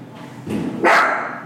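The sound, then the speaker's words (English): A new puppy lets out a couple of sharp, high-pitched barks, the second one loudest, over a quiet background. “This is going to be a little bit more difficult than I thought, I guess, with my new puppy starting the podcast again.”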